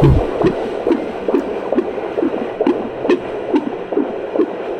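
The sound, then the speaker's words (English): A fetal heartbeat, of a baby at about 36 weeks, on a doppler monitor: rapid, steady whooshing pulses, roughly two or three per second, over a constant hiss of static, fairly loud with no voices. “Oh, is that your baby's heartbeat?”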